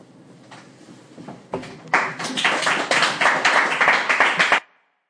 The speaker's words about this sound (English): So then, obviously, the applause went on for a long time.